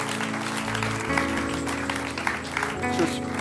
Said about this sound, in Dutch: That's fantastic, guys. Why don't we give these people a hand right now? Laten we deze mensen een applaus geven.